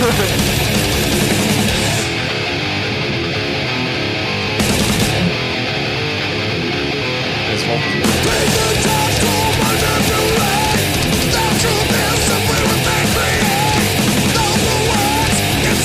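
A loud, dense heavy metal track with distorted instruments filling the whole mix and harsh, yelled vocals, played continuously with brief breaks in the highest register.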